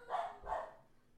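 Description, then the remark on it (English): Two quick barks from the household's dogs in succession, fairly faint, with a short quiet tail afterward and no talking. “Sorry if you can hear my dogs.”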